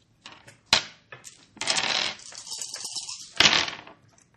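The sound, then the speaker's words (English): Dice clatter onto a hard tabletop as everyone rolls, with a few sharp clicks followed by a longer tumbling rattle that bounces and settles. Fairly loud, with no voices. “Okay, everybody roll, and don't wait for them.”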